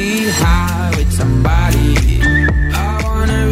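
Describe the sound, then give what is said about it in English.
A bright whistled melody rides over a full pop song with steady drum hits and bass, the whistle line rising briefly above the loud, busy mix with no voices. “I like the whistle.”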